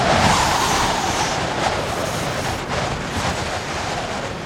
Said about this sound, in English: Wow! Windy!